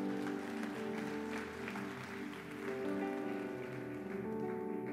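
A crowd applauds steadily for about five seconds, a dense, even patter of many hands, with sustained musical tones humming underneath.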